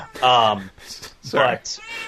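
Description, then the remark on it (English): A pet cat meows twice, two drawn-out, loud, tonal cries a second apart, with a short higher squeak trailing the second one; no one is speaking. “I'm gonna kick out my cat.”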